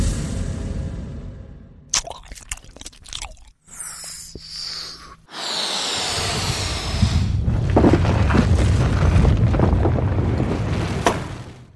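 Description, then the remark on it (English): A cartoonish bubblegum volcano eruption sound effect: scattered squishy pops and crackles give way to a loud, sustained rumbling gush with wet, bubbling textures, and no voices. “Here it is, a bubblegum volcano. Sound explosion.”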